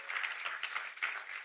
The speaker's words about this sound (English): I think we ought to just give the Lord a good hand clap all over and thank him for what he's doing today.